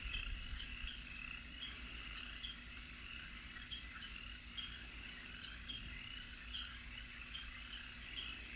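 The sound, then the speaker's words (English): A steady, dense chorus of insects buzzes and trills continuously in a forest of tall trees beside a boardwalk as the sun rises, with high shimmering tones layered over a low drone and occasional frog-like croaks mixed in. No one speaks. “You silently stroll, taking in your surroundings and listening to the hum of insects.”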